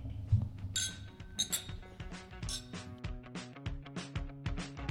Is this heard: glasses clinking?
yes